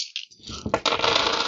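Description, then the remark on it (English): A handful of dice clatter onto a hard tabletop, a few quick knocks swelling into a dense, rattling tumble that lasts about a second. Fairly loud, with no voices. “That's the right number of dice.”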